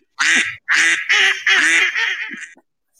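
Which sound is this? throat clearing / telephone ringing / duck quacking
duck quacking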